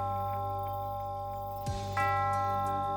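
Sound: clock striking three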